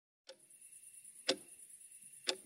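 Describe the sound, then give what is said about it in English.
A bedroom clock ticks slowly and steadily at 2:37 a.m., with sharp, crisp ticks about a second apart over a faint background hum. “That's the clock in my bedroom, and right now it's telling me it's 2:37 a.m.”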